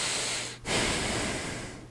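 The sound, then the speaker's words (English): Loud breathing blows straight into a microphone: a rough, airy exhale, a brief pause, then a long, noisy breath with a slight snorting edge. No one speaks. “Now I use it as a comedic device, but when we were first doing it, we didn't realize that was happening, and all you could hear was me breathing onto the microphone.”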